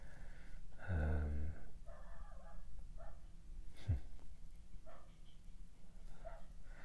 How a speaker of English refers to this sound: Dog's got a lot to say. Or maybe just seen a bird. Don't know how much that will be picked up on the microphone. Probably a lot. He's really going for it.